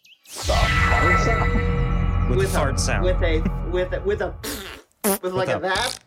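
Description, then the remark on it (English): A person blows a long, loud, buzzing raspberry to imitate a fart, lasting several seconds, followed by a few shorter sputtering vocal bursts. “With a fart sound, it turns into a human woman with fiery red hair”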